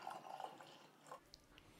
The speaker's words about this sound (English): We've got this beautiful white wine, but we've actually been decanting it. So, well, let me just pour you a little bit.